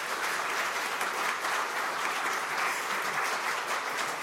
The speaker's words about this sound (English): And for that, you should give them applause, just on that song.